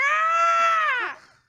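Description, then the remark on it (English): A person imitates a hawk's screech with one loud, drawn-out, high-pitched cry that holds steady for about a second, then bends downward and fades, with no other sound around it. “It's just a hawk going.”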